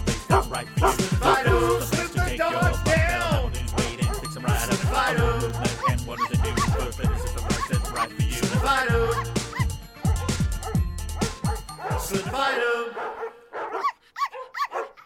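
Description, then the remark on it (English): Dogs bark repeatedly in quick bursts over loud, thumping music. The barking and music carry on steadily, then drop away to a few scattered sounds near the end. “just ran to the front door because she heard the dogs barking.”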